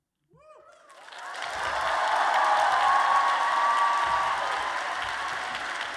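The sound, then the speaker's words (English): A large crowd bursts into sustained applause for a calibration poet from Reynolds High School, swelling quickly to a loud, dense wash of clapping that holds steady, with a few cheers and whoops rising over it near the start. “Big round of applause.”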